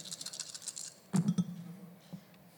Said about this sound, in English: add a d6 for every spell slot. So I get basically 5d6. There you go. Roll all the d6.